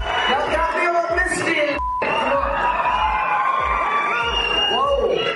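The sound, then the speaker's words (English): A large sold-out theater crowd cheers and whoops loudly and continuously in a standing ovation as Chris Rock takes the stage, with shrill individual yells and whistles rising above a dense roar of voices, plus a brief dip partway through. “They greeted him with two standing ovations as he took the stage.”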